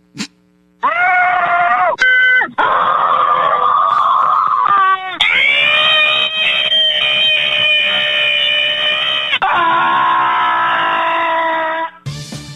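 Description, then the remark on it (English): Long, sustained screams from callers to a hotline where people can scream into the phone come through a tinny, telephone-quality line, one voice after another for about eleven seconds, loud and shrill with wavering pitch and hardly any pause between them. “and you can just scream into the phone and they'll let you.”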